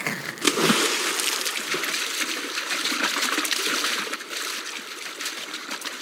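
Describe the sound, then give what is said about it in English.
Rushing river water splashes and churns steadily for several seconds, a dense wash of flowing sound with bright spattering on top and no voices. “Okay, remember, the trick to not getting swept over the waterfall is swimming upstream.”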